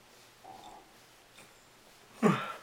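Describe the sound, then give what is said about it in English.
A yawn: after a couple of quiet seconds, a brief, breathy, voiced exhale bursts out loudly at the end. No one speaks. “Yawn break.”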